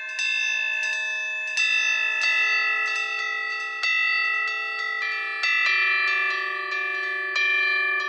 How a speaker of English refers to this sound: There's an Eastern theme throughout this track, which gets helped out by this chime sound.